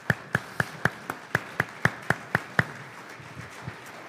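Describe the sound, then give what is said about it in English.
An audience gives a round of applause: steady, evenly spaced hand claps ring out for about three seconds, crisp, then trail off into a few softer, scattered claps. Nobody speaks. “Please join me in giving them a round of applause.”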